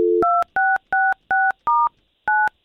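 A short low tone gives way to six clear touch-tone beeps as a phone number is dialed, keyed in a steady rhythm with a brief pause before the final press. No one speaks.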